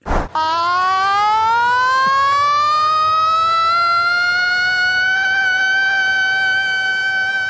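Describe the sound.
A man in the crowd at a cricket game in Hobart, Tasmania, screams in imitation of a siren, a loud sustained wail rising in pitch after a brief click and holding steady for several seconds, with faint crowd noise underneath.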